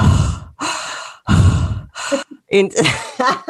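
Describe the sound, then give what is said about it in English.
A voice imitates the heavy, raspy breathing of a creepy prank caller: three loud, drawn-out breaths into the microphone, followed by a few shorter, voiced huffs and murmurs. “Breathing heavily like people used to do in the 90s. They would just call and...”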